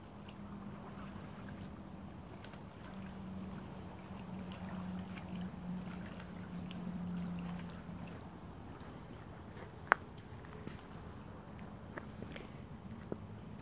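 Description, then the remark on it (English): Water at the shore makes a soft, steady wash with a low rumble beneath it. There is no talking, only an occasional faint knock or click, including one sharper tap near the end. “We're going to take a short detour to the shore here and just listen to the water.”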